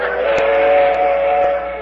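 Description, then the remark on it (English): Train number 47 rumbles past with a steady, loud steam whistle blowing throughout, while rhythmic clacks of the wheels on the rails sound at regular intervals underneath. “Well, there goes old number 47 now.”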